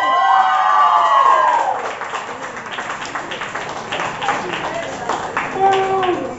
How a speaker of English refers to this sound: Applaud the poet. Keep that applause going.